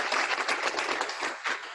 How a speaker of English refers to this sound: Everyone, let's get a hearty round of applause from our studio audience.